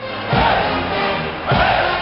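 A large crowd cheers and shouts continuously, with two louder swells of roaring voices, while band music plays faintly underneath the noise.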